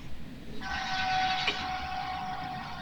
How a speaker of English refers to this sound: Be prepared for the train